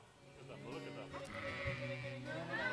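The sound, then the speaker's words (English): Several sheep bleat in overlapping, wavering calls in a played video of a shepherd and his sheep, with a busy flock murmuring in the background throughout, steady in loudness. “And I just want to go back to that image we saw before of the shepherd and his sheep.”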